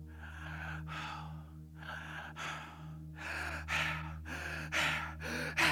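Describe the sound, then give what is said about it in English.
A voice imitates a man's heavy, rhythmic breathing as he runs closer: a series of loud gasping inhales and exhales that grow louder and quicker. No words are spoken. “It sounded like the sound of a man breathing and getting closer.”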